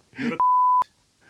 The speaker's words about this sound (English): will you be able to beep us out? Because I've always wanted to be beeped out. I can beep it out if you want, yeah.